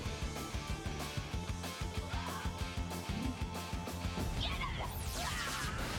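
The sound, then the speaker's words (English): Loud TV-show explosions as a new Zord robot combination walks through them: a dense run of booming, crashing bursts over a steady pounding rhythm, with swishing whooshes sweeping through near the end and no pause in the noise. “See how I was just walking through all those explosions?”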